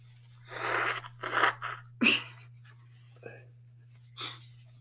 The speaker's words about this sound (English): It's early in the morning, y'all, and my nose runs in the morning, and we're both yawning, so pardon us.